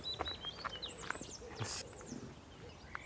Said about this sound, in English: Oh, it's really close, this lapwing.